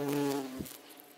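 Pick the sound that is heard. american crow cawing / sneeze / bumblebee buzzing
bumblebee buzzing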